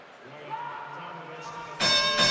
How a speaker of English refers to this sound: Oh, it's your 30-point bell brought to you by Larry H. Miller, Lexus of Murray, and Lexus in Linden,